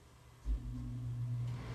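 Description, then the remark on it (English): An air conditioner kicks on with a low thump, then settles into a steady, droning hum with a faint tonal whine layered over the rumble. No one speaks. “Okay, here comes my air conditioner. Ready? Now.”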